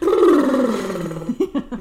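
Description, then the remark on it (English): A voice imitates a horse with a long, loud, descending whinny-like groan, followed by a few short, choppy lip-flapping sputters. “Did you like my horse impression?”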